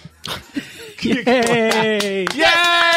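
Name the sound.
hands clapping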